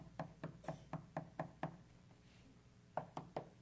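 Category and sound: impact, knocking on a door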